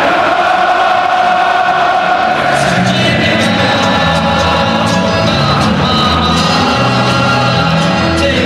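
A loud stadium crowd sings along together, a dense wash of many voices holding sustained, tuneful notes that swell from a roaring murmur into steady massed singing throughout.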